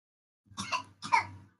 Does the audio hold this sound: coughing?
yes